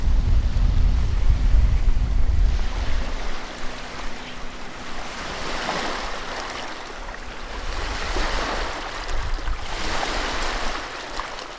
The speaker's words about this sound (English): Like more like a beach, as you can see just now, the water was like hitting hard coming like from the shore, and then you see all these rocks.